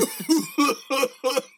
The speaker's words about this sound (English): I've had this cough for a little bit. I don't know. It's got to go away.